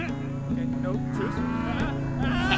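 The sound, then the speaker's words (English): A bullock moos in long, low, drawn-out bellows, several in a row with brief breaks between them, loud and steady with no one talking. “You want a mechanical bovine tamed, I'm your gal, but a flesh and blood bullock?”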